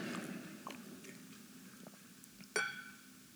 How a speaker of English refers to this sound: Ponder that as I inconspicuously drink this water real quick.